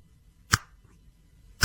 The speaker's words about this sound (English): I can't snap my fingers very well. I can't snap my fingers very loud at all. Can you snap your fingers loud? Oh, yeah. Fairly.